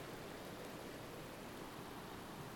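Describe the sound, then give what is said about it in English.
A steady, even rush of running water from a spring bubbling up and flowing down into a river, continuous and unbroken throughout with no voices. “The constant sound of running water bubbling up and running down into the river was invigorating.”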